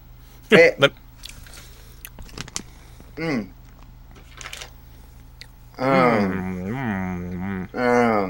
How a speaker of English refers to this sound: Okay, it chews like jerky. Wait. It chews like jerky. It's peppery, too, and I didn't read any pepper.